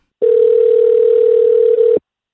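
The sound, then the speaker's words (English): A single ring of a telephone on an outgoing call to city councilor Robert Kerwin: one steady electronic tone lasting about two seconds, loud, with no voices around it. “I actually called him to ask.”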